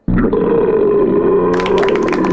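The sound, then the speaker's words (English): A long, loud belch rumbles on for over two seconds, starting abruptly and growing rougher and raspier toward the end, with no talking over it. “we'll be discussing and rating these beers with the Suds ratings plus our signature belching sound”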